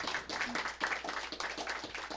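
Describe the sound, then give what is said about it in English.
A crowd claps steadily for a couple of seconds, a dense, fairly soft patter of many hands, with no voices standing out. “You want to give her a hand? You want to clap for her?”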